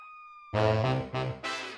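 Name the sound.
fire truck siren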